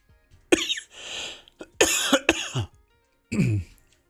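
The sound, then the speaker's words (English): Several harsh coughs come in quick bursts, followed by throat clearing, with brief pauses between them and no talking. “Oh, was that cough all on the air?”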